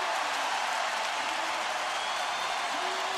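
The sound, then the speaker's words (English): A loud arena crowd at Oracle roars and applauds during a basketball game just tied at 105, in a steady, unbroken wash of cheering and clapping that holds at full volume for about three seconds, with no clear voices standing out. “Listen to this crowd at Oracle.”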